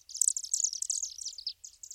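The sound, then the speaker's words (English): A chimney swift gives its rapid, high-pitched chittering call, a call often made in flight, running almost continuously as a dense stream of twittering notes with a few brief pauses, heard clearly on its own without any talking. “They are a diurnal species of bird, and they make this really unique chittery call that they'll do oftentimes when they're flying.”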